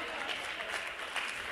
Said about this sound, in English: do you realize how the claps are getting less, sir? Are you hearing me?